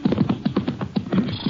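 Horse hooves clip-clop in a steady, quick rhythm, about eight thuds in under two seconds, moderately loud, as a horse borrowed from a corral is ridden toward a shack up in the hills, with no one talking.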